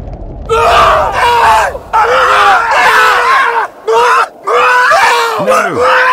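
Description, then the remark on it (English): A crowd of voices roars a battle cry as fighters sound the charge and attack an approaching enemy. Loud overlapping yells and screams surge in long waves, broken by a few brief pauses, with falling, groaning shouts near the end. “We have to sound the charge. Steady. They're right on top of us. Roar!”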